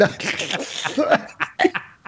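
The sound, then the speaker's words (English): Several rough coughs and breathy bursts from more than one person, clustered together with a bit of laughter-like spluttering mixed in. “No, it's supposed to stop the coughing, guys. Why are you coughing?”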